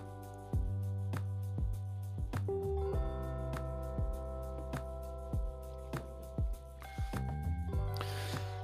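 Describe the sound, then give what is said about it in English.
Background music plays with a steady beat, and near the end a short fizzy hiss rises over it, like a can of passion fruit sparkling water from Aldi being cracked open. “That is good sparkling water from Aldi.”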